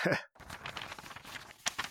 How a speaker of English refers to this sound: Oh, the mail's escaping. The mail monster. It's a paper avalanche.